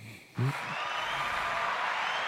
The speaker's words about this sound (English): Hand claps.